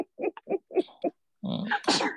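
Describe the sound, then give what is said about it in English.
A small animal sneezes in a quick run of five or six short, snuffly bursts, followed by a louder, longer stretch of mixed noise that may include a voice. “Bless you, little buddy.”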